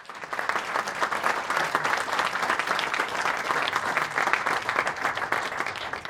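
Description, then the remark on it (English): Sustained applause from an audience for a motor racing panel including Sir Stirling Moss, a dense steady patter of many hands clapping at an even loudness for about six seconds, with no voices rising above it. “Round of applause, please, for our panel.”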